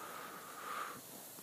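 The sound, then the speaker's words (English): A Labrador dog wandering around outdoors in a cold wind, sniffing: short snuffly breaths and snorts against a steady airy hiss, fairly quiet with no voices. “My lovely Labrador is wandering around, having a sniffle around to see what he can smell.”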